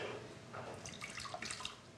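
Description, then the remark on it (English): Boiling water pours steadily over a lemon to melt off its wax, splashing and trickling in a continuous, wet stream with bright bubbling and spattering throughout, no voices present. “And how we do that is we pour some boiling water over the lemon.”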